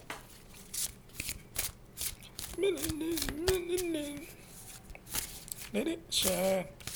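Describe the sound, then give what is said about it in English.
A deck of cards is being shuffled, a dense run of quick papery riffles and flicks throughout, while a brief high-pitched voice sounds twice, once drawn out in the middle and again near the end. “What I should be doing is shuffling.”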